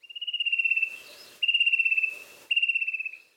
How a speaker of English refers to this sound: I was recently walking in Churchill National Park in Melbourne on Wurundjeri country when I heard the familiar sound of the fantail cuckoo.